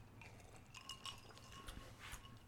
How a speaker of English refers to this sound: So we're going to clink it. And then sink it.